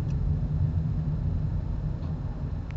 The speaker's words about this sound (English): I'm trying to merge in some traffic now.